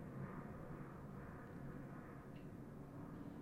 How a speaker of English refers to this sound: I really hope y'all can hear that because that plane is so fucking rude.